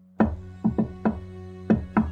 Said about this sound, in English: He walks up to one of the doors on the first floor and raps on the door with a unique knock. He waits for a moment, but there's no answer. Concerned, he knocks again.